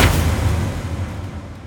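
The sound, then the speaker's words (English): A heavy machine tumbles through the air and slams onto rocks far below with one deep, booming thud at the start. A loud low rumble follows and slowly fades over more than a second. No voices. “Then it hits the rocks far below with a sickening thud.”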